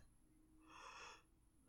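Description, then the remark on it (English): A single breathy yawn, a soft airy exhale that swells and fades over about half a second, fairly quiet, with no talking around it. “And with that yawn break, we're going to go to this email.”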